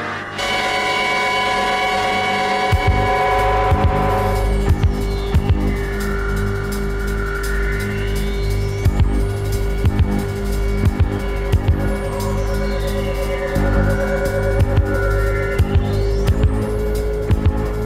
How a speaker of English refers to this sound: But let me play you some music and we'll be right back.